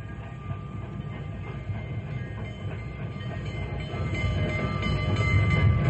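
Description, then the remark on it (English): A train rumbles in, its heavy low roar and rattling cars growing steadily louder as it draws near and pulls into the station, with no voices present. “Boy, we got here just in time. Here comes the Fireball Express now.”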